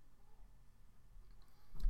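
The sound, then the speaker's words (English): Dice clatter across a tabletop in a short burst of clicks near the end, rolled for an athletics check that yields 4 successes, following a stretch of quiet low background noise with no one talking. “Dice.”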